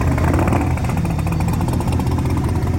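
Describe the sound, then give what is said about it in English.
A Duramax diesel engine, mounted up on stands, runs loud with a thumpy, lumpy idle, a steady low pulsing throb with a broad mechanical clatter and its blower audible over it, and no voices. “Sounds thumpy for a Duramax.”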